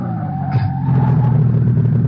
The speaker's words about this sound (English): I slam on the brakes.